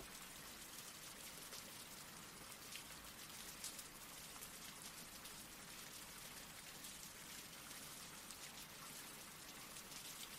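Steady rain falls throughout, a dense, even hiss of countless drops with faint pattering ticks mixed in, holding a constant level with no voices or other sounds.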